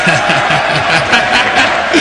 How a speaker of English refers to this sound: Oh, excellent. I've never heard such a rowdy crowd in Congress. I like it.